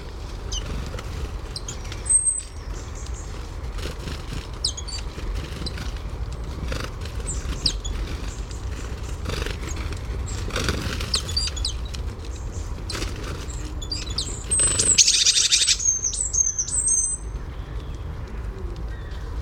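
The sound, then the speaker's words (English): Woodland birds feeding on a tree stump at a nature reserve in the Vale of Glamorgan: scattered high chirps and thin whistled calls over a steady low rumble, with soft tapping and pecking clicks, and a brighter burst of calls near the end. “a soundscape of some birds feeding on a tree stump in the woodland at the Nature Reserve in the Vale of Glamorgan”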